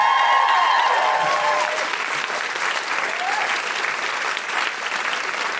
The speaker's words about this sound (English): Big round of applause for Liz.